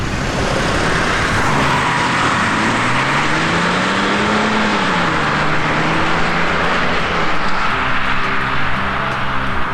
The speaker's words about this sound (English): I'm gonna keep the Lincoln. And as the two cars pull out into the driveway, past the topiaries, back towards town.